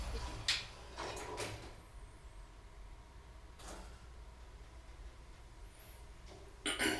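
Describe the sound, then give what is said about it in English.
An enclosed elevator space with a steady low hum, punctuated by several sliding door movements—rumbling, rattling slides near the start, another midway, and a final one at the end. “Now we'll take it into an elevator.”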